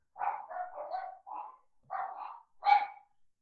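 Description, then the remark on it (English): Pet dogs barking in a quick, excited burst of several overlapping barks and yips, loud, with a short pause before a final sharp bark. “My dogs are losing their shit.”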